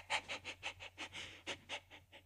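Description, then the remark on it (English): A dog, Lash, pants rapidly and steadily as it comes in, about a dozen short breathy huffs in quick rhythm, soft and airy with no voices over them. “And then Lash comes in.”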